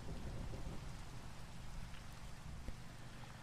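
Steady, dense rainfall hisses evenly throughout, with a low, rolling thunder rumble beneath it and a few soft drip taps. No one speaks.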